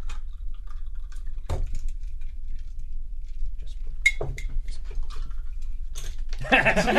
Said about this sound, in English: All right, so now you're going to pour it into these delicious these glasses here. On the rocks.